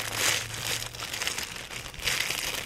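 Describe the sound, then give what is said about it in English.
Crisp crinkling and rustling as a Cumberland rum butter paper plate and a plastic spork are handled, with bursts of brittle crackle at the start and end over a faint low hum. “I brought the official Cumberland rum butter paper plate. Look out. And plastic spork.”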